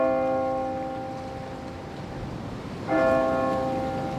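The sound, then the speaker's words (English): A church tower clock bell strikes ten o'clock; two deep, resonant tolls are heard, each ringing out with rich overtones and slowly fading before the next. No voices are present. “the clock in the tower of the church was striking 10.”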